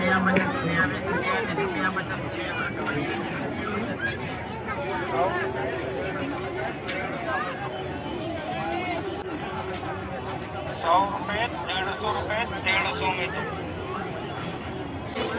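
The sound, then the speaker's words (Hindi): Busy vegetable market crowd chatter: many overlapping voices form a dense, steady hubbub for the whole stretch, with faint clinks and scattered louder calls rising now and then. “सुनो ये आवाज़ क्या कहना चाहता है, क्या कहना चाहती है।”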